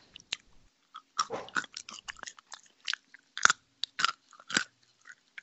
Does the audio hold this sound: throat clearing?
no